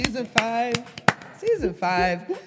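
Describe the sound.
A handful of sharp, crisp hand claps land at irregular intervals, mixed with loud voices whooping and hollering in sustained, pitched bursts.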